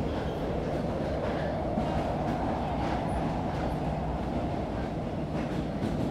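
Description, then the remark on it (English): A steady, loud rumble of a train riding along rails, two stops from Oxford Station, dense low-frequency roar with faint rhythmic clatter and occasional soft higher squeaks, continuous throughout with no voices. “I couldn't have slept for too long because we were only two stops from Oxford Station.”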